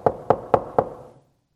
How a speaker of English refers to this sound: And the door that's being knocked on is Pilate.